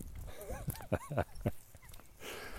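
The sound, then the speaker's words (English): A dog on a walk whines and whimpers in short, rising and falling squeaks while footsteps tap along beneath it, with a soft outdoor hiss at the end. “This dog is showing up.”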